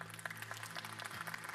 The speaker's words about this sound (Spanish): Gracias a mi esposa por aplaudir.